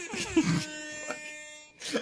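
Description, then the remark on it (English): An air horn meme sound effect: a brash, buzzy air horn blast holds steady for about a second, loud, with brief bursts of voices just before and after it. “I thought it was very relevant, because I love air horn memes.”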